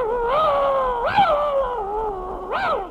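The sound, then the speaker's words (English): A dog howls and whimpers in one long, wavering, high-pitched whine that swoops upward twice, steady and fairly loud with no talking. “Will your dog bite me?”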